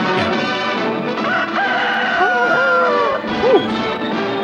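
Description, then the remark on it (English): A rooster crows loudly, a drawn-out call lasting a couple of seconds, followed by a short rising note, over a dense, steady background. “Yeah, rooster, you're safe for today.”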